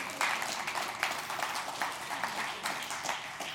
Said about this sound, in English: That's the story. That's where you clap, because that's a big deal.